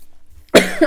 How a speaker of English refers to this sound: Me coughing. Fuck, I've still got this fucking cough. It's been months. It's not COVID, everyone. It's not COVID.